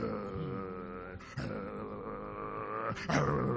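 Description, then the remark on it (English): A person imitates the growl of a mother dog baring her teeth to protect her puppies: a sustained, rough, low rumble lasting a few seconds, broken by two brief sharper bursts, moderately loud with no other sounds. “And as you are getting close, you are getting close to give her food, but you will bare her teeth and begin to do.”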